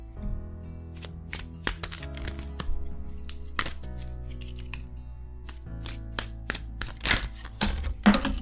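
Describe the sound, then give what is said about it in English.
Cards from a Hanson Roberts tarot deck are shuffled, making irregular crisp snaps and riffling clicks, some in quick bursts, over a soft, steady bed of background music with no talking. “Before you go today, let's shuffle the deck and pick a card to reflect on for August.”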